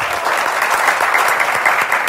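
Steady audience applause for a guest from the Dallas Morning News, a dense wash of many hands clapping at a constant, fairly loud level throughout, with no voices standing out.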